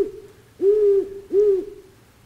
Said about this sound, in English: as far as I can tell, there was a great horned owl in that bush right near my head. I never saw it. It was loud. I've never had an owl that close to me hooting.